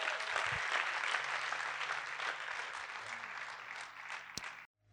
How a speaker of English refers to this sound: Give God a clap one more time.